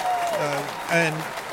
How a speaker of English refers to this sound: Oh, so wow. It's quite fascinating. Wow. Let me get some applause over there on that one.